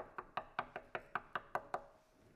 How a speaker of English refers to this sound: She starts to knock on the door, pulling her hoodie down and pushing her dark sunglasses up.